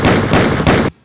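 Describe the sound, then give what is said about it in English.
Neon-colored water balloon rubber bullets from Nerf Riot gear smack into a target in three quick, loud, booming hits, each blending into the next in a dense rumbling burst before cutting off abruptly into silence. “If someone's trying to loot your big wheel, take them out with neon-colored water balloon rubber bullets.”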